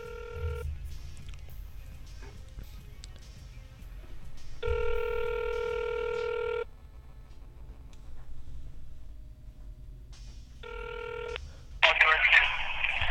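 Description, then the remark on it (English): Telephone dialing tones sound in two clear electronic bursts as someone places a call to put a caller on the air, a two-second tone followed later by a shorter one, over a low background rumble, with a brief crackle of noise near the end. “How do I work this newfangled machine called a telephone?”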